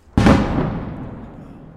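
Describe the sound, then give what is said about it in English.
A single artillery shell explosion in Kherson, Ukraine, from shells fired by Russian forces across the Dnieper River: a sudden, loud blast that cracks across all pitches, then fades into a long, low, rumbling echo with no voices. “Every day, hundreds of shells are lobbed into Kherson and the surrounding areas from across the Dnieper River by the Russian forces who retreated from the city last November.”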